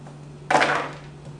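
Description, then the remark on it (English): A short clatter of dice tumbling across a hard wooden surface, a quick rattling burst that fades within a moment, over a faint steady hum. “You sure those aren't loaded dice?”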